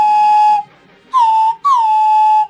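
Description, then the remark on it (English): A handheld whistle blown three times in imitation of a train whistle: a steady blast, a shorter one, then a longer final toot, loud and shrill, with no talking. “Okay, well, I can't find that one, but pretend this is a train whistle.”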